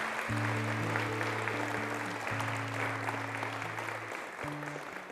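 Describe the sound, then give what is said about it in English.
A church audience applauding steadily and fairly loudly throughout in praise for members who serve in the armed services, a dense wash of clapping, with sustained low organ-like chords holding underneath and shifting a couple of times. “The Lord is to be given a hand clap of praise even now for those in our midst who serve.”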